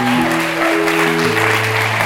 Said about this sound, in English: Another thing that we're doing to step out into the unknown is, as of September, we are starting a new youth ministry in Kingsway. We can clap that more.